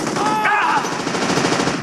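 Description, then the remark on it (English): Loud, sustained machine gun fire in a played news clip about violence on Mars: a dense, rapid string of shots rattling on without pause, with a brief higher whistling tone rising over the barrage partway through. “Just sawing them in half right on the news.”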